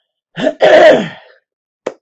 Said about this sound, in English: Because I don't know how much longer my voice and keeping back the coughing up the lung is going to happen.